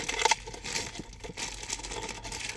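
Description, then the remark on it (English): A plastic blind bag is crinkled and torn open, with a louder burst of rustling at the start followed by steady, scratchy crackling. No one speaks. “I might have to rip the bag.”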